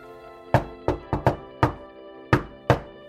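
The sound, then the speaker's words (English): Seven sharp knocks by a visitor on a wooden front door in an uneven rhythm, a quick cluster of four followed by a pause and three more, each with a short resonant decay and no voices. “Well, it sounds like we have another visitor.”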